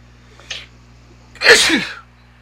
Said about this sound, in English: Bless you. Thank you.